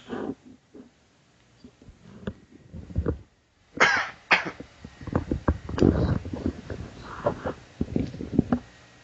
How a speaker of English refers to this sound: I had to cough. I appreciate you moving away from the mic.